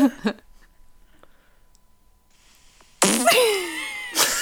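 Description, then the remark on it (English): In a fart guessing game, Pin the Fart on the Birthday Girl, a fart sound is played: after a quiet stretch, a loud, raspy fart bursts out for about a second, its pitch sliding downward, then a short second blast follows. “would you like to play Pin the Fart on the Birthday Girl?”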